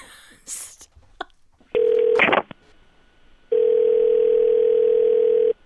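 Telephone line sounds of a call to a place called McGee's Corner in California: a short burst of rustling and clicks, a steady mid-pitched tone interrupted by a quick noisy dialing burst, then another long, loud, even ringing tone.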